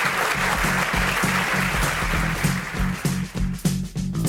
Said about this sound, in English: Let's give them a round of applause for getting through the lightning round.